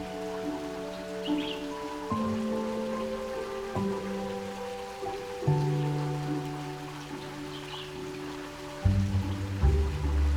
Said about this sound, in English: Water tunnels out from the heart of one of the cherubs, splashing gently into the water below.